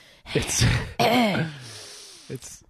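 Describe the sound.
A person with COVID mimics an old man's noises: a heavy breathy exhale through the mouth, then a long drawn-out groaning sigh that falls in pitch, followed by a short breathy huff.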